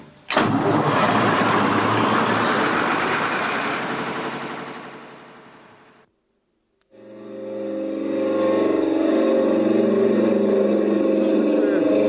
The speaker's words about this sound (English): I'm going to start up the Lister engine now to get the fog signal test.